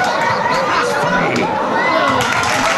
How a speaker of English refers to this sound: The crowd noise is horrible. It was like almost disruptive to the bit. They had like weird yelling, a guy like coughing. At one point somebody agreed with him.